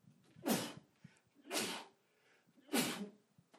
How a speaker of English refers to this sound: I'm about to sneeze here, sorry.